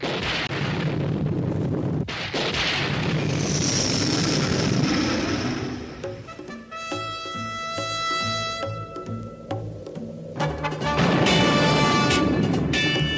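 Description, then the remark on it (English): A loud, deep roll of thunder rumbles and swells for several seconds at the start of a TV show's theme, then gives way to bright, tonal theme music with steady drum hits and no talking. “But that thunder at the beginning.”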